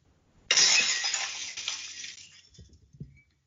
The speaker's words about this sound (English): Glass Shattering, Steve Austin, innit?